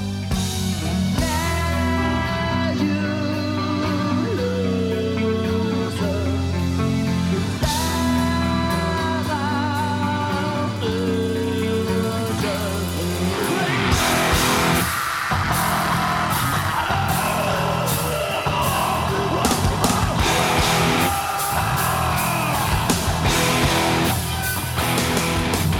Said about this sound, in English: I just made a note that he does the scream, like the big growly scream when it when it turns heavy. So now you listen, because I'm omniscient, and does the da da, and then he starts just screaming. Yeah. And the growls.